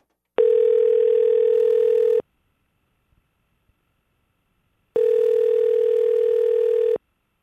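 An outgoing telephone ring as hosts from Utah's VFX call a contest entrant: two long, steady electronic tones, each lasting about two seconds, separated by a silent pause. The line sounds loud, with no voices.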